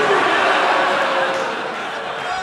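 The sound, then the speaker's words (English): An audience at a show booing together, a dense, sustained roar of many voices that holds steady and loud for a couple of seconds without pause. “Oh, Are you booing?”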